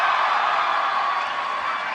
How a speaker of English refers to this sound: Can we just sit here and let them cheer for the next hour? Maybe the whole, what's the whole panel of just bathing you in their love? That sounded gross. Welcome, you guys. Welcome to New York Comic Con.